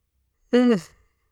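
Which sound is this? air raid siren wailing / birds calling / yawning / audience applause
yawning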